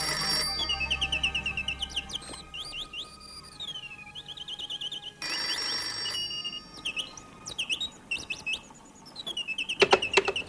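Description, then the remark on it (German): A telephone rings in an apartment in a city of millions, with a bright, warbling electronic tone, repeating chirpy bursts in quick succession, fairly loud with no voices. “Zur gleichen Zeit klingelte in der Millionenstadt in Julia Westphals Wohnung das Telefon.”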